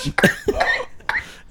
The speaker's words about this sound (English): Why are you holding a mic to your face while you cough?